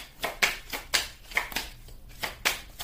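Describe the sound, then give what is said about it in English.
Tarot cards being shuffled, a quick run of crisp, papery riffles and slaps repeating roughly every half second, with no one speaking. “I took two cards while doing the shuffling and whatnot because something told me to take them.”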